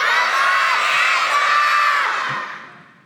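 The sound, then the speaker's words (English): A crowd of children, on a count of three, yells "come on" together toward a door in one loud, sustained shout lasting a few seconds, then fades out as the voices trail off. “When I count to three, I want everybody to this door and yell out, come on, Azza”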